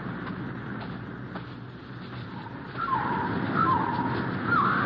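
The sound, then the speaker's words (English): A soldier imitates a bird call with a few short, rising whistled chirps in the second half, heard over a steady rushing background of wind or outdoor noise. “Well, this time, it happened to be one of my own men.”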